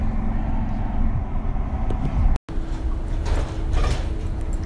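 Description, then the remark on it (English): Steady low rumble of a bus interior while driving, with engine drone and road noise filling the cabin, faint rattles overhead and a brief cut-out midway; the second bus of a ride home at 5:25 p.m. “It is 5:25 p.m., and I'm on the second bus.”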